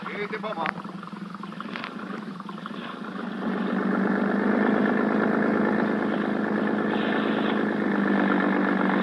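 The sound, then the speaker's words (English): A police boat's engine drones steadily at a harbor police dock near Manila, its rumble swelling louder partway through as it revs up and then holds a strong, continuous roar. “When Sergeant Malva finally arrived at the harbor police dock, a boat was ready for us”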